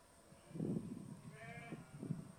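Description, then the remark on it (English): Sheep bleat a few times in quick succession, wavering, as they respond to a shepherd girl calling them, with no talking over them. “Here's a little clip of a shepherd girl, interesting, and she's calling out to the sheep.”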